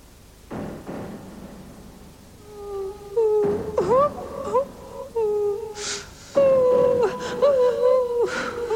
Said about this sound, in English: No, she's crying, look. Who's crying? This woman on the screen. She's been there for ages. It must be one of those foreign films.